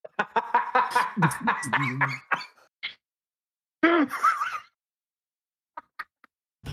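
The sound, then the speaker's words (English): A rapid string of harsh, loud coughs runs together with strained, voiced sputtering, breaks off, then returns as one more short spluttering burst before a few faint clicks. “A coughing fit right there.”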